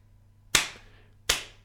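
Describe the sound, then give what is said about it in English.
Two slow, deliberate hand claps, spaced well apart, each a sharp crack with a short ringing tail over a faint low hum; no one speaks. “The sarcastic clap can quickly become”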